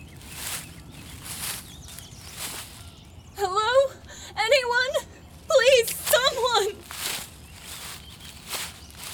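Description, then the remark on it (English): Steady footsteps approaching through leaves or undergrowth in woods at a walking pace, with a high wavering whimper-like cry rising over them for a few seconds midway. “That sounds like... footsteps.”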